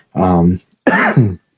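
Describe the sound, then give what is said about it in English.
Two quick, loud coughs with a rough, throaty, voiced quality, separated by a brief pause, from a person with a lingering cough after an upper respiratory infection. “by the way, I'm going to be coughing off and on through this episode, because, man, I cannot get rid of this cough.”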